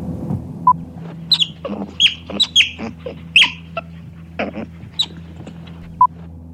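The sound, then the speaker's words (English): A sea otter gives a string of high, thin squeaks and chirps, about a dozen in irregular bursts, over a steady low hum with no talking. “It's the sea otter.”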